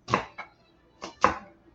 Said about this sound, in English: There we go. And I'm going to chop it up fairly fine. Dice it, actually.